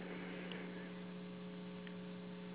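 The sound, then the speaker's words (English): A steady electrical hum buzzes continuously with a faint hiss of line noise, like interference on a phone connection. Nobody speaks, and the level stays constant throughout. “That was just a little interference on the line.”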